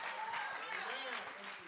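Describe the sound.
An audience at a church service claps their hands unto the Lord together in a dense, steady burst of applause lasting a moment, with a voice speaking over the clapping throughout.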